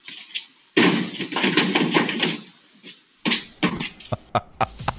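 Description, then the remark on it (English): A deer leaps over two cars in a driveway and crashes heavily into a parked truck, caught on a Ring doorbell camera: a sudden loud impact followed by scraping, clattering rattles, then a second burst of thuds and a few sharp knocks trailing off. “now this was caught on their Ring doorbell camera, recording a deer leaping over two cars in the driveway and slamming into the truck.”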